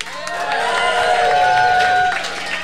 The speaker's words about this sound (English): Listen to the crowd roar.